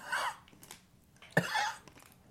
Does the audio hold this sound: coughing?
yes